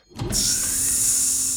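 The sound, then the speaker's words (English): A futuristic door slides with a rising mechanical whoosh that settles into a steady, bright, hissing whir, holding at full strength for over a second with no voices. “The door sealed shut behind him.”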